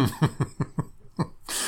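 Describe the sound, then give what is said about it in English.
A rapid series of about six gruff, guttural throat-clearing bursts, fairly loud, evenly spaced, followed by a brief hiss of breath at the end. “I've had it a few times where I'll like clear my throat and then I'll be like, where did my dad, when did he show up?”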